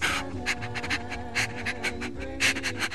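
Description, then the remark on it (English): A dog, Gamju, pants with its tongue out in quick, steady breaths, about two per second, fairly loud, while being hugged by a boy, over a soft sustained musical tone in the background. “He fell down to his knees and put his arms around Gamju, and Gamju had little choice but to pant and smile with his tongue out.”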